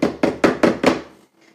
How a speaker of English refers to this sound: Now, I don't know if you heard that, but I just banged the shit out of the table.